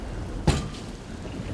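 A single sharp crack of thunder from a lightning strike bursts out and fades into a short rumbling tail over a steady, rain-like hiss. No one speaks.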